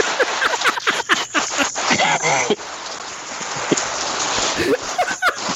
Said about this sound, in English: Just randomly starts raining.